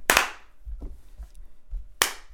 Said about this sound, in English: Do you want to clap to sync your audio now? Yeah.